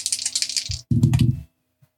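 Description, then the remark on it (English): Percentile dice for a tabletop role-playing game rattle briskly for most of a second, then tumble and clatter loudly across a hard surface before settling into silence. No one speaks. “Just roll a percentile for me.”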